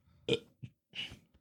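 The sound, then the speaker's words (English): A couple of throaty burps, the first short and loud, the second longer and rougher, with a few small gulping sounds in between and no talking. “Burp you.”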